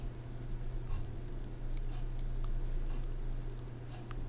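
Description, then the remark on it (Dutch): Soft, steady fizzing of a Hertog-Jan 0.0 alcohol-free beer bubbling after the can is opened, a continuous crackly hiss with faint scattered pops and a low hum underneath, no talking. “Kan je het horen bubbelen?”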